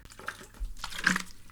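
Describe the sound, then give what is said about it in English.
A quick sip of water with soft wet slurping and a gulp, then a brief liquid swallow. No one talks during it, and the sound stays fairly quiet throughout. “Sorry guys, I got really thirsty.”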